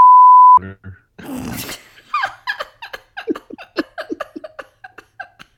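A loud, steady censor bleep at a single mid-high pitch holds for about half a second, then cuts off into a burst of breathy noise and quick, animated voices.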